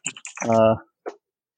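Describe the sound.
A few quick taps on a computer keyboard, broken by a brief voiced sound in the middle, then one more isolated click before silence.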